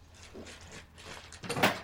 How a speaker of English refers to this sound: Oh. Hi. Sorry, I didn't mean to open the door.